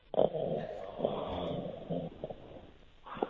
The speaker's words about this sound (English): Oh, it's another bloody snorer. Don't phone up and snore.